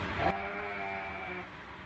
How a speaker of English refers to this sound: Can someone tell me what this is? It's a goat. What kind of goat is that?